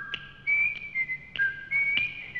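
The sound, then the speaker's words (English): Someone whistles the jaunty, tuneful melody of a TV theme song, with clear sustained notes stepping up and down, accompanied by light rhythmic clicks roughly every half second. No one speaks. “Okay, well, how about a national anthem where you don't even have to sing? You whistle.”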